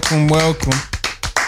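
A sustained vocal tone gives way to a handful of sharp, close hand claps landing in a loose, uneven rhythm, each a crisp slap that dies away quickly.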